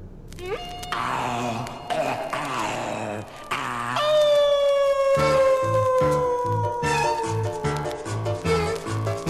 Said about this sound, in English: It's a full moon, and a howl was heard. The young ladies all shook with fear, because the lobizón is coming.